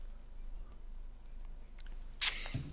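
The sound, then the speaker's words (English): A single quick sneeze bursts out near the end, sharp and breathy against a low, steady background hum, with no talking around it. “Bless you”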